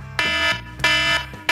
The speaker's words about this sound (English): I'm going to let the alarm go off just so everyone understands how well he did that.